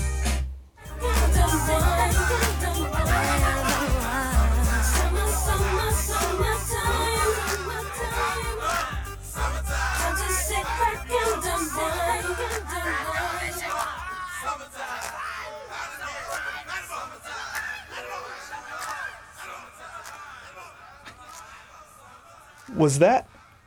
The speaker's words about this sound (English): Was that a double fade? The music faded, and then the voices and clapping and snapping also then faded.